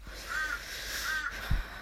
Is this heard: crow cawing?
yes